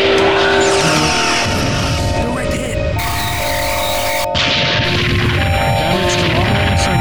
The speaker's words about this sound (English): 3, 2, 1. Mark. Phasers, fire.